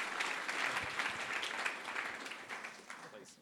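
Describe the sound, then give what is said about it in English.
A crowd bursts into steady, enthusiastic applause with dense clapping throughout, mixed with scattered cheers and whoops from the audience, as a man from the audience is invited up onto the stage to ask a last question. It holds fairly loud for a few seconds before easing slightly. “Big round of applause.”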